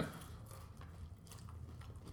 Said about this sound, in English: Sorry if this podcast is just crunching. Not good radio.